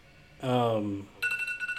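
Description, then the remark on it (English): A voice sounds briefly, then a laundry dryer timer gives a run of steady, high electronic beeps that pulse quickly in loudness and keep going to the end. “Well, that was the laundry timer.”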